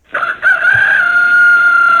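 rooster crowing sound effect

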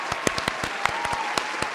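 applause

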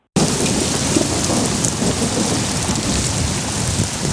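torrential rain with thunder

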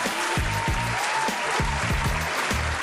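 applause

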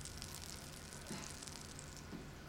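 chicken sizzling

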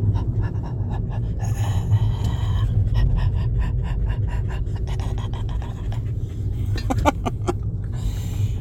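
dog panting

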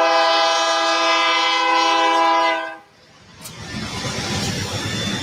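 BNSF freight train passing

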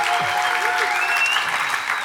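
audience applause and cheering

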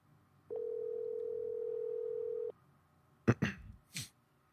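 phone call dialing tone

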